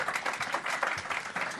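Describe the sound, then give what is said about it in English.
An audience applauds in a steady, dense wash of clapping that stays fairly even in loudness throughout the short stretch, with no voices standing out above it. “Round of applause, round everybody.”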